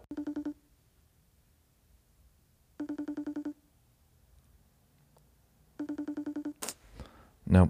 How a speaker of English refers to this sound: That's funny. FaceTime. Hello. That's … answering the phone.